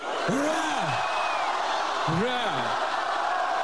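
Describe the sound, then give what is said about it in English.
A large crowd, mostly bussed in, cheers on Red Square in Moscow, led in cheers by Putin, in a steady, loud roar, with two long, drawn-out collective shouts rising and falling above the noise about two seconds apart. “Leading in cheers a crowd that had mostly been bussed in to try to rally a nation now in a war that Russians can no longer ignore.”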